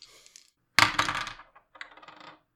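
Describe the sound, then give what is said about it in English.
Dice clatter and tumble across a hard tabletop in a bright rattle, then a second, quieter roll settles after a brief pause. No one speaks. “And are you adding any dice to that?”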